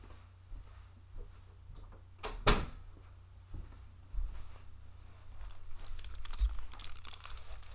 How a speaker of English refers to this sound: Sorry, I had to make sure the door was closed.